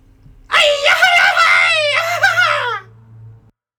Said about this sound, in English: Everybody find a place, whether that's a closet, into a pillow, in your car, in the shower, find a place to cathartic scream with us, together, and we'll do that together, everyone.